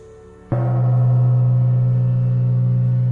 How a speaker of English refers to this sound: The gong strikes. My time is up.